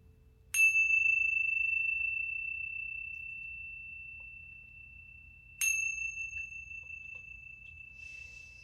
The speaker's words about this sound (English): And when you hear the sounds of the chime, coming back into this space.